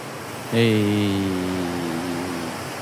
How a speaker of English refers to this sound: Wow. Sounded like a lot of static for our listeners. I know, right?